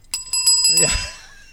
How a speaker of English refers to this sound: We have a new leader in the clubhouse of the greatest bell moment on the show.